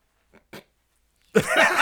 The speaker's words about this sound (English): you can keep going. Just ignore the guy over here blowing his nose. You guys, you just keep it's going. It's very distracting.